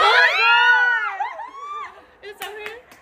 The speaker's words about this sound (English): I just screamed because I saw my photo card.